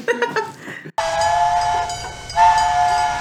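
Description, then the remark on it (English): A steam train chugs in quick rhythmic puffs for about a second, then breaks into a loud, sustained whistle that swells again near the end, with rumbling underneath. “How does a train eat? It goes, choo-choo.”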